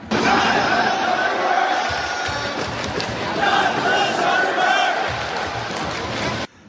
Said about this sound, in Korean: 중국 프로축구가 열리는 경기장. 관중들이 갑자기 일본인에 대한 적개심을 담은 구호를 외칩니다.